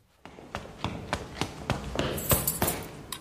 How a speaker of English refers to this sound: Sorry, mate. You just caught me with my key in the door. It doesn't seem to be opening.